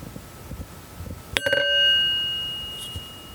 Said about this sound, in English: That was a sad sounding chime. We're going to do that one again.